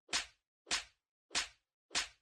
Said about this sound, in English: And 5 slaps for your pussy ass.